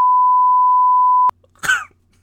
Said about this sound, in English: Cut that out. I'll cut that out. Or just beep out the swears.